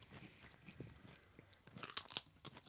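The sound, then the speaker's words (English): Crisp crunching of an Uglies jalapeno-flavored potato chip being bitten and chewed, a series of sharp irregular cracks building in intensity toward the end, with no talking. “Look at that crunch. That's a good chip.”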